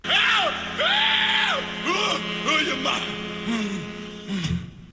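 A wild, wailing vocal screams and howls in long swooping arcs over sustained instrumental tones, loud, several frenzied cries tumbling into one another before cutting off at the end of a song.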